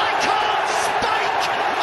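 A big indoor crowd at the darts World Final roars and cheers wildly after Michael Smith's nine-darter, a dense, loud, continuous wall of shouting and applause with no letup.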